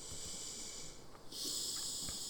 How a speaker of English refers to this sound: The nose breathing is intensifying. Surely you can edit that out.